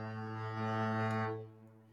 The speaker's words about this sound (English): You get the foghorn two times.